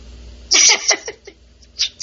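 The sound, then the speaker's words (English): A cat meows, a loud drawn-out cry followed by a few shorter, softer mews and one more rising call near the end, with no talking. “Oh, hey. Meow. Hey.”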